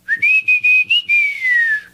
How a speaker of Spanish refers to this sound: Todos estos ejemplos son de lenguas habladas en México, pero el fenómeno del habla silbada se encuentra en todo el mundo.